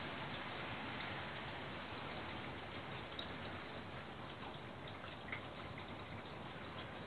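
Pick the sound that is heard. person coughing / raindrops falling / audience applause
raindrops falling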